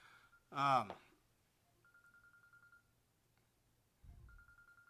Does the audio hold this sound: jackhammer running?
no